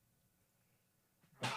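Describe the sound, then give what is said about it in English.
After near silence, a short faint intake of breath leads into one sudden, loud, breathy sneeze that bursts out right at the end. “Bless you.”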